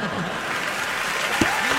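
Steady, dense applause from a group fills the whole stretch, a bright crackling wash of claps at even loudness, with a brief voice-like sound cutting in near the end.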